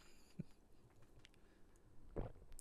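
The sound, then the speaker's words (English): A single soft, wet gulp of swallowing while drinking from a large cup, low and muffled, with a faint earlier click and small mouth noises against near silence. No one talks. “Do the gulp and then...”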